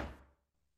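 A door shuts with a single close, heavy thud that quickly dies away into near silence. No one speaks.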